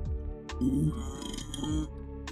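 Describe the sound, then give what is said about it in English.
A low, drawn-out burp rumbles for roughly two seconds, sounding slightly distant and muffled, as if turned away from the microphone, with no talking alongside it. “I had a burp away from the mic.”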